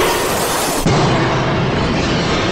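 A mirror shatters with a loud burst of crashing glass, a dense wash of noise that swells with a heavier low thud partway through and keeps roaring to the end.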